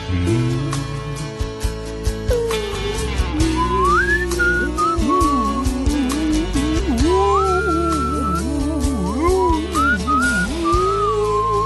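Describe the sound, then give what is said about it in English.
A voice imitates a whale call with long, swooping whistled glides that rise and fall in pitch, repeating over a steady musical background for about twelve seconds. “That was my whale.”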